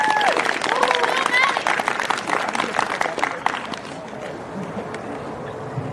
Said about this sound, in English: Oh my God, can I get a round of applause for our tech team?